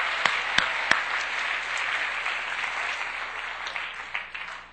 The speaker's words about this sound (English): Everyone give big Pastor Matt a big hand of applause.